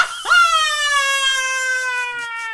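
A person lets out one long, loud moan, rising sharply at first and then holding a steady, slowly falling pitch for about two seconds with no talking, practicing for a moaning contest held on Instagram.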